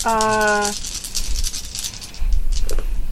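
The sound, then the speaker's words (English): Dice rattle and clatter in a quick run of sharp little clicks lasting a couple of seconds as they are rolled again in a game, after a short hummed vocal tone at the start. “Keep those dice handy, because we have to do it again.”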